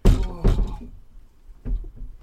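Three dull wooden thunks as a couple of doors are opened, two close together and a third after a short pause, with faint rattling between them.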